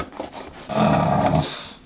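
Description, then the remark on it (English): A dog lets out a low, sustained growl lasting under a second, moderately loud, following a few quieter rustling sounds. No one speaks. “And there's the dog wanting to be a part of the show.”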